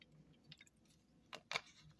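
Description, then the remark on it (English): Someone takes a quiet sip of a drink: soft wet mouth noises, then two brief slurping bursts near the end, with no talking. “Again, let me take a sip, y'all.”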